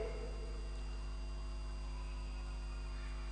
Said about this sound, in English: I can hear some humming.